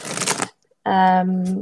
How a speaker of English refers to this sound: I haven't shuffled cards in such a long time.